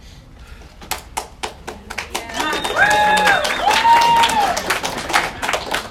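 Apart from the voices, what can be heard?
audience applause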